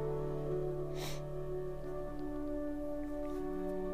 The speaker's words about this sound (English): First, I want to apologize for the sniffles a little bit. It's pretty dusty around here.